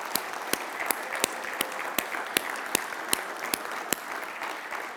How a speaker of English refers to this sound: When was the last time you had a round of applause for making supper? Probably not very often. So why don't we give our moms a round of applause today out of appreciation for who they are?